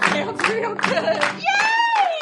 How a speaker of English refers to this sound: Clap your hands real loud. I'd love to hear you cheer. We're gonna be clapping right now. Woo! Keep it going. That's real nice.